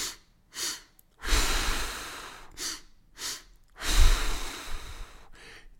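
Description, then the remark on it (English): A person demonstrates cyclic (physiologic) sighing twice: two quick, short inhales followed by one long, airy exhale, repeated in a steady rhythm. The breathing is fairly loud, with no talking. “That kind of breathing pattern, two breaths in, short, followed by a long exhale, is called cyclic sighing or physiologic sighing.”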